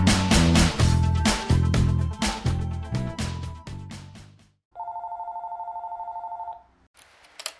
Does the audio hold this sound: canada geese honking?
no